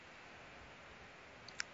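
A couple of quick, light keyboard clicks near the end, keys tapped close by against a steady low hiss, with no talking.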